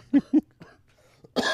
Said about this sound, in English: Hey, you all right over there? Why? Everything okay? Why? What do you mean? Because you coughed. I'm very concerned.